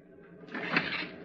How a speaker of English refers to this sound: I was called into the captain's cabin. I opened the door.